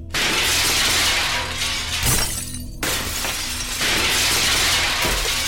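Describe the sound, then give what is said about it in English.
Windows shatter loudly, a sustained crash of breaking glass with bright, scattering shards that tumbles on for several seconds, with a brief lull and a second burst of falling glass. “The windows burst as if from an explosion, spraying me with broken glass, my stinging flesh opening in 100 places.”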